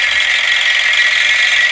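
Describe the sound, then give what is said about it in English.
A loud, steady electric buzz from a handheld vibrating massager being used on the body, holding an even high-pitched whine with no breaks for the whole stretch, alone without any voices. “It's a rather vigorous vibrating action, to be honest.”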